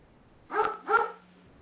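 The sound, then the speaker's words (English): Two quick barks from a puppy in close succession, moderately loud, with no talking, against a quiet background with a faint low hum. “Enjoying this wave of comfort, even with the dog barking.”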